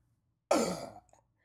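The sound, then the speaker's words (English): A single abrupt, gurgling throaty burst that sounds like a burp stuck in the throat, loud at first and fading over about half a second, followed by a faint click. “I just had this weird burp like caught in my throat.”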